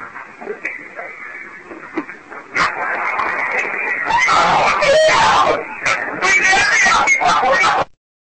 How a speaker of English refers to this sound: He asks these two specific questions, and you hear this horrific, like, tormented scream come through. And yeah, I hear her say, let me out. Let me out.